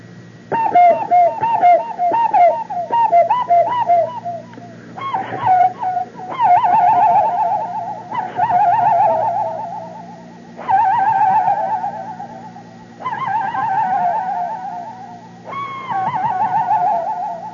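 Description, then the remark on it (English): A hollow, owl-like hooting whistle made through cupped hands, repeated in a series of wavering calls with an echo-chamber effect trailing each note, fairly loud. “That used to be the secret cry of our gang.”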